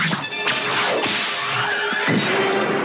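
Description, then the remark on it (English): Sharp, loud whip cracks snap, a few of them spaced out over a couple of seconds, with whooshing swishes of the lash cutting the air in between. This is the sound of Indiana Jones's whip in the movie, made by cracking a real whip, with Gary Summers at Sprocket / Skywalker Sound. “But also in the beginning of the movie is the first time we have the sound of Indy's whip.”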